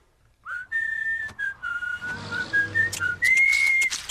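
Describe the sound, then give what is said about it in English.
A bright, melodic whistled tune opens the theme song of the cartoon Fanboy and Chum Chum, playing alone and shifting through a series of sustained notes that rise near the end, with soft background music underneath. “Starts with whistling.”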